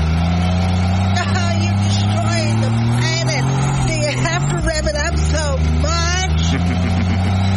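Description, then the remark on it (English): A diesel truck engine runs steadily, a deep continuous rumble with a slight rise in pitch midway, while people talk over it throughout; the truck is being used to charge a pink Mary Kay car. “This diesel truck can charge your vehicle, and we need to get your pink Mary Kay car back to your mom before she wakes up.”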